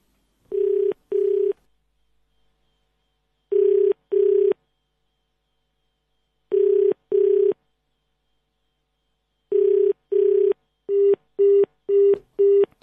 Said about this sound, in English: So it's not ringing. Ah, okay. So there we are. Something is happening finally. But let's try it again. Let's just redial it. And let's see where this takes us.